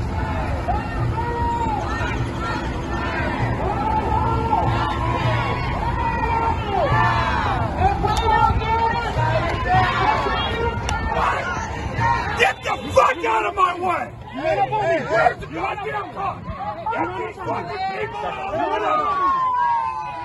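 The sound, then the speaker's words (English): A crowd of Black Lives Matter protesters blocking an intersection, with cars stuck in all four directions, shouts and yells over one another in a dense, continuous roar of overlapping voices, with a steady low rumble underneath for the first part that fades out partway through. “some Black Lives Matter protesters blocked an intersection.”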